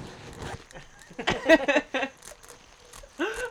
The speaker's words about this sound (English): I'm crumpling a napkin.